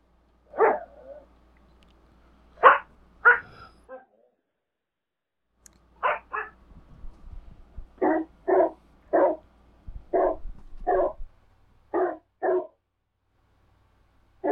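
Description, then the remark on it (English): A person barks like a dog, loud, in short bursts grouped in pairs and runs with brief pauses between them, over a faint low rumble. “has turned himself into a dog.”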